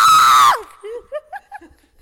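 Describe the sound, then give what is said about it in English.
A child lets out a loud, high-pitched scream lasting half a second, imitating how they screamed when ice was put down their back, then trails off into a few short, breathy giggles. “Then my brother put ice down my back, and I screamed like this.”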